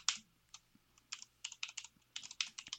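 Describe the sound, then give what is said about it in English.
Quick, irregular computer keyboard clatter, bursts of sharp clicking keys with short pauses between flurries, over a faint low hum and no voices. “you're just typing.”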